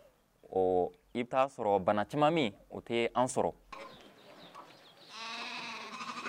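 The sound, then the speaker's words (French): Sheep bleat several times in quick succession, loud, their wavering cries crowding together before fading into a rustling, breathy background with another faint, drawn-out bleat near the end. “Apprenons comment maintenir nos moutons en bonne santé.”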